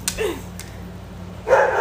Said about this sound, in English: The dog barked though. Because they saw me.